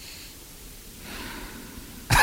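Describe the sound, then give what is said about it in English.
Heavy breathing into a microphone: a soft, airy inhale swells for about a second, then a sudden loud, rushing exhale blasts and distorts at the end. No one speaks. “Stop with the breathing, will you?”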